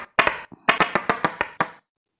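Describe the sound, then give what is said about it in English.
Dice clatter across a hard surface: two quick sharp clicks, a short pause, then a rapid run of about six bright, knocking taps that trail off and stop. “All right, let's roll the dice.”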